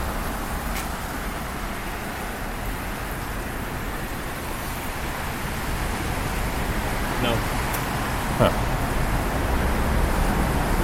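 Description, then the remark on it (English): A dense, continuous roar of car tires on a bridge overhead fills the scene, swelling slightly louder near the end, while a person briefly murmurs a couple of words over it. “I can hear the roaring of the cars from above. It's pretty intense. Oh, it's still tires.”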